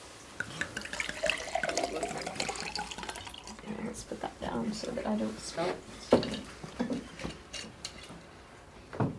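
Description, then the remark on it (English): Water splashes and trickles steadily into a glass for several seconds, with a few sharper clinks and drips toward the end; faint voices murmur in the background. “Oh, I need water.”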